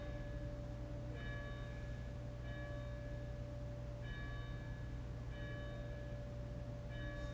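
A church bell rings in steady, evenly spaced strokes, about five or six peals, each with a bright ringing tone that lingers, over a constant low hum. No one speaks.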